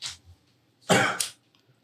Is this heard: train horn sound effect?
no